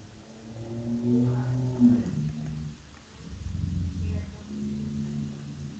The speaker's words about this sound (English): What is happening at your house right now? Sounds like a motorcycle went by and it revved its engine as loud as possible.